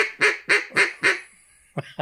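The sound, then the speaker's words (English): A voice imitates a duck, giving four loud, evenly spaced quacks with a short reverberant tail, then two quicker, softer quacks at the end. “That sounds exactly like a duck.”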